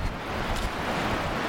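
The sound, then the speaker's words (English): Steady, blustery wind roars across an open microphone on a sea cliff edge where seabirds nest, blending with the constant wash of surf below. No voices, just an even, unbroken rush of coastal noise. “So, we're on a cliff edge. There are nesting birds on the top.”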